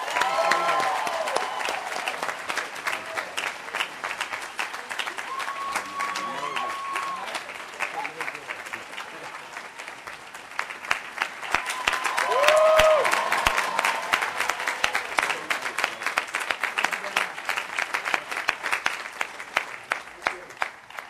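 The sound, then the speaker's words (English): At an induction ceremony, a large crowd applauds steadily for about twenty seconds, dense clapping mixed with cheers and a few whistles, swelling louder midway before continuing strong. “Please give a round of applause for Mr.”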